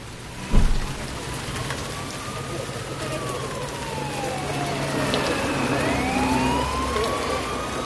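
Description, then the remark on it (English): Steady rain patters against a window pane in a dense, constant hiss, with a dull thump near the start and faint sirens wailing and gliding. “Awake once again to the sound of the rain on the window pane.”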